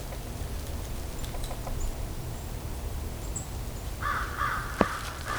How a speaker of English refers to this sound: Here comes a crow. There goes the crows. These are American crows.